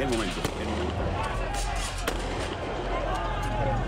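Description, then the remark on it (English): Sharp gunfire bangs and bursts of exploding firebombs, amid tear gas, pop out over the loud, chaotic crowd din of a mass protest in Venezuela, with a couple of especially strong cracks standing out amid the constant roar of voices. “Gunfire, tear gas, and firebombs exploding in the heart of Venezuela.”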